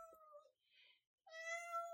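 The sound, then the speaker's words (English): A person imitates a cat with two drawn-out meows, separated by a brief breathy hiss, the second meow longer and slightly louder. “Says the kitty.”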